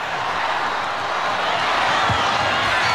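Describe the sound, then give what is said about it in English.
A crowd of tens of thousands on their feet at McDonald Jones Stadium roars in one continuous, dense wash of noise, holding loud and steady for about three seconds and swelling slightly toward the end, with no clear voices standing out. “Kalen Ponga from in front will let the crowd tell you the story.”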